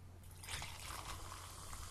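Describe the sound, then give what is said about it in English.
Elixir classic Indian tonic water is poured steadily into a glass of gin, a continuous bubbly splashing with a faint fizzing hiss running for the full two seconds, no voices. “I've made another slight error there, in that I've put quite a lot of that tonic water in, and something's been lost.”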